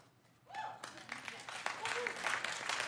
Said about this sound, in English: I'm not sure that was worth applauding.